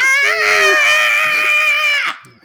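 A single raw, sustained scream rings out loud and close for about two seconds, strained and piercing, then cuts off abruptly with nothing else around it.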